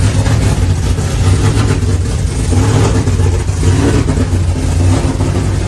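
A car engine with a Whipple supercharger, low vacuum, locked cams and a drive-by-wire 132 throttle body runs rough and loud throughout, its deep, uneven rumble surging and sagging in a choppy, irregular rhythm rather than settling into a smooth idle.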